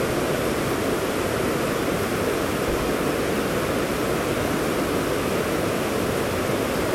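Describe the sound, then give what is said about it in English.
Steady rushing water flows without pause, a dense, even hiss like a stream or small waterfall, holding the same loudness throughout with no voices. “Dive with the flow of water”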